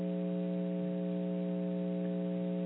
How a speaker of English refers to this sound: So if you got the hum, then it's like, well, there's nothing I can do about that one. Just a connection.